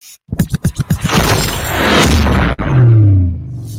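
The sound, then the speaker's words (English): A digital card pack opening effect: a quick run of rhythmic ticking pulses builds into a loud, bright whoosh and shimmer, with a sharp crack, then a low swelling tone. “Your pack is now unsealed. It's time to open.”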